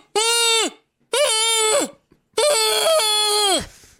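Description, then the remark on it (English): Air is let out of a rubber chicken toy, which squawks three times, each a long, loud, nasal honk with rich harmonics that wavers and then drops in pitch at the end. The third honk is the longest, and nobody speaks. “I'm letting air out of one of those rubber chickens, bro.”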